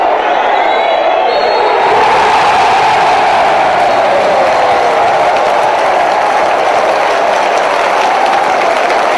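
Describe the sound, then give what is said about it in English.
A large football crowd of Shropshire fans roars and cheers continuously at full time, a dense loud wash of voices with whoops and applause, swelling sharply after the first couple of seconds and staying sustained throughout. “Really hearty cheers.”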